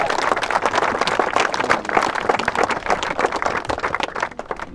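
A crowd at a community energy efficiency presentation applauds the presenter with steady, dense clapping that holds at a fairly loud level before thinning out and tapering off at the very end. No one speaks over it.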